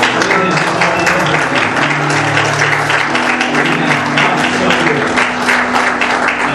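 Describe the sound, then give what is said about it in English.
A large church audience claps hands steadily and loudly during worship, a dense, continuous wash of applause with low sustained musical tones humming underneath. “We don't just worship Him by our words. We don't just worship Him by our hand clap, by our hands.”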